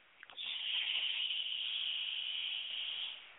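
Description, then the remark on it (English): A long, steady breath pushed out through the nose during a guided breathing exercise, a soft airy hiss that starts abruptly and holds evenly for about three seconds before easing off. No talking. “Inhale through your nose. And exhale through your nose.”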